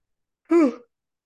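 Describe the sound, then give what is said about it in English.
A single short voiced yawn, fairly loud, its pitch sliding down as it trails off, with silence before and after. “I can't stop yawning. I apologize.”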